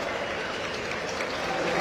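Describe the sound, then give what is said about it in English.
A stadium crowd at a football match applauds in the 30th minute as O'Connell goes off with a pulled hamstring and Ben Tozer returns as his replacement, a steady, dense wash of clapping with a constant roar and no pauses or peaks in loudness. “and the applause not just for O'Connell but also to see the return of Ben Tozer.”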